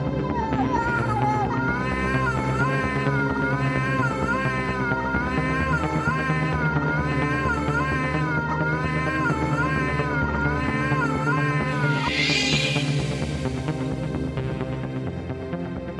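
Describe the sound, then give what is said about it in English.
Wavering, drawn-out meows and caterwauling cries from cats repeat in a steady, rhythmic pattern over a dense, constant background, loud throughout, with a brief hissing burst near the end. “Dumpster cats, dumpster cats, dumpster cats, dumpster cats.”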